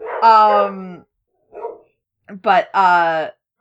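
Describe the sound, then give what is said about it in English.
Dogs barking: a loud, drawn-out bark, a short softer yip after a pause, then another pair of sharp, sustained barks with a falling pitch. “Oh, no. Dogs. I've upset please. The dogs. They felt threatened.”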